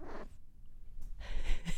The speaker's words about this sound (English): She sounds like a little alien, right? Don't you love it when your cat does that?